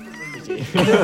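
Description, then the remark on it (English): A person imitates a cat's meow with a short, nasal, wavering vocal cry lasting about a second, growing louder and rougher toward the end. “They're used to people petting them, and it smiles at you and kind of meows.”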